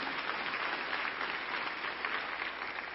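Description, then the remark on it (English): A crowd at a sermon gives the Lord a hand clap of praise: sustained, dense applause for about three seconds, a steady wash of overlapping claps at an even, fairly loud level with no voices breaking through. “You can give the Lord a hand clap of praise right there, and it won't intimidate me at all.”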